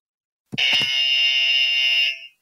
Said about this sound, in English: So I'm going to let our panelists here introduce themselves, and I want them to sound their buzzer into the microphone so we all know whose sound goes with who.